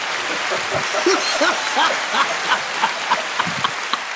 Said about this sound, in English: Hold on, let me give you a round of applause for that.